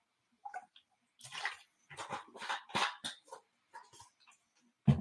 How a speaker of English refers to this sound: You're drinking water. I am drinking water. I'm drinking water and wine because I got to work out tomorrow morning.